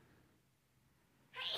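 A sudden, sharp sneeze bursts out near the end, following a stretch of near silence with only faint background noise.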